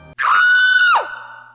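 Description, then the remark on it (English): A girl lets out a single loud, high-pitched scream that holds steady for nearly a second, then breaks off abruptly with a short trailing echo, as a tarantula lands on her head. “"You missed!" screamed Eddie, but poor Molly is screaming louder.”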